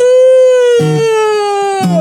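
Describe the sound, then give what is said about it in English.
A voice imitating the scream of a cicada being stepped on lets out a long, loud, high-pitched wailing scream that holds steady and slowly sinks in pitch over two seconds, with two brief lower vocal bursts breaking in partway through. “It was such a loud scream that the sun was terrified.”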